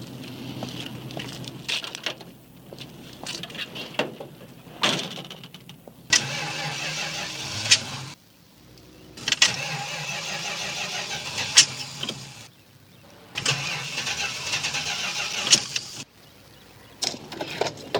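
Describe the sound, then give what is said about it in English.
A French car's engine, with over 100,000 miles on it, cranks and turns over in several loud bursts separated by brief silences, each burst settling into a rough running rumble before cutting out. No one speaks. “Yeah, my car is a French car.”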